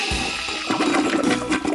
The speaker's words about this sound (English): scratched his head and pushed the flush button. Whoosh!